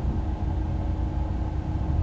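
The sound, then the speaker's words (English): A car driving by in Grand Rapids, Michigan: a low, steady engine rumble, fairly loud, holding constant throughout with no voices. “a car I just saw drive by that sounds adorable.”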